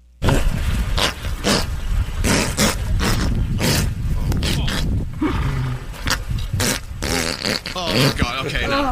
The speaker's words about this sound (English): This is a horse fart.